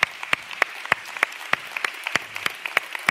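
An audience in a church applauding, with many overlapping hand claps forming a steady patter and a few sharper claps standing out. No one speaks over it.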